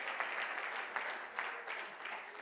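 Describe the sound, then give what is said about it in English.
A church audience claps hands as it is being seated. The applause is a steady, dense wash of many overlapping claps forming a continuous crackling texture with slight swells, with no voices standing out. “Clap your hands one more time as you're being seated.”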